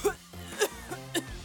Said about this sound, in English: I turned my head and coughed.